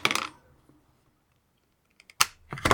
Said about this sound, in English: And that is the third die I've dropped on the floor. This dice tower is terrible.